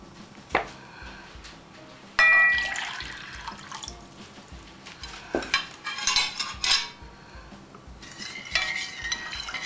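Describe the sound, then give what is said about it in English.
A utensil scrapes and clinks against a metal pot as a liquid of sugar and white vinegar is stirred before being brought to a boil, with irregular sloshing and tapping and no voices. “I give it a stir and bring it to boiling point and give it a chance to cool off while we do the rest of the preparation.”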